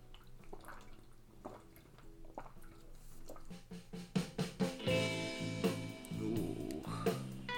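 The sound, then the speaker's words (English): Someone drinks water that has ash in it: quiet liquid movement, then a run of wet gulps and swallows with some sloshing, fairly loud, with no talking. “Yeah, it really sucks I ashed in this water, but I will drink it, and I am drinking it.”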